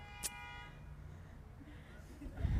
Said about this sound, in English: That's my timer, sorry.